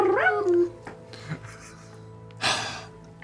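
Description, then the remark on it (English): A voice imitates a cat's howl: a short, wavering, pitched yowl at the start, followed later by a brief breathy burst of noise against a quiet background. “Cat howling.”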